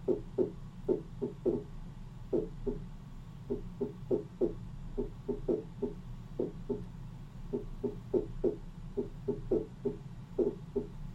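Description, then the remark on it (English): An irregular heartbeat: soft, low lub-dub thumps arriving in pairs with uneven gaps between them, some beats bunching together, over a steady low rumble with no voices. “You see the irregularity in the heartbeat?”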